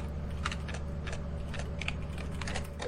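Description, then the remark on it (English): Irregular bursts of clicky keystrokes on a computer keyboard, about a dozen quick taps at uneven intervals, fairly soft, over a steady low hum with no talking. “I saw it and then he started typing.”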